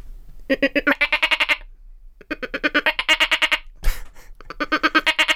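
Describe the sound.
A person imitates the bleat of a pet goat named Godoretta in three loud bursts, each a rapid wavering series of nasal pulses, with short pauses and a brief breath or thump between them.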